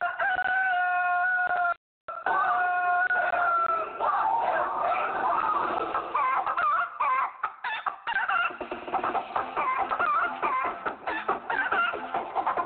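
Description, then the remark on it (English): A rooster crows loudly with long, harmonic calls while several chickens cluck and squawk continuously around it, a busy barnyard chorus with a brief gap near the start. “I could start calling them the Chickens of Hades.”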